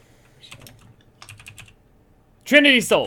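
Two quick bursts of computer keyboard typing, crisp clicks clattering in short runs, followed by a person briefly speaking loudly at the end.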